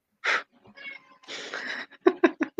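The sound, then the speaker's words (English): A cat vocalizes: a breathy yowl and a hissing stretch, then a quick run of four short chirping calls, with no one talking. “Damn, that cat you got there, Ken, is a killer salesman.”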